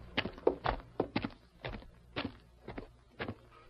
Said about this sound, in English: Who's the critter rapping on the door?